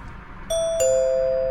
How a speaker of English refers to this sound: I'm going to ring the doorbell now